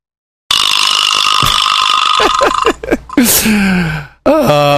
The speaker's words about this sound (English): Nice. Very nice. Also known as a vibra slap or a donkey call. Is that what that is, a vibra slapper? It's a vibra slap, yeah. Very nice, the vibra slap. You slap it and it makes that noise.